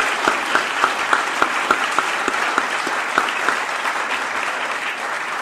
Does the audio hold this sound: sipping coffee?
no